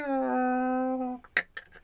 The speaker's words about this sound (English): Whale song, I don't get it. It's interesting for about 3 minutes and then now I'm bored now. Oh, no. Close your eyes to a bit of whale song.